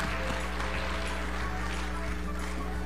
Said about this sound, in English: We have had an awesome week with VBS. Let's give it a round of applause again for all the volunteers and those who participated.